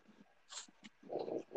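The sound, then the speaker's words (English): A dog snorts and breathes heavily near the microphone, a few short huffy bursts followed by louder, longer rasping breaths toward the end, with no one talking. “Oh, no, my dog clicks the iPad video. What do you want from me? Dog?”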